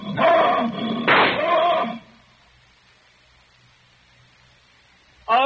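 A loud lion roar rumbles and snarls for about two seconds with a harsh burst in the middle, then fades to near silence before a voice briefly begins at the end.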